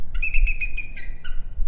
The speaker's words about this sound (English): Hold in your head what you think an eagle sounds like. Hold it. Hold it. Okay, good. Now here is what an eagle soaring overhead sounds like in real life.